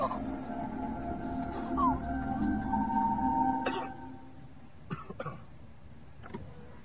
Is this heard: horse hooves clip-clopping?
no